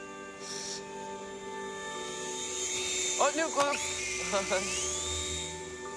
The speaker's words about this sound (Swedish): så flyger den här lilla Sara med en radiostyrd helikopter som hon får från sin bror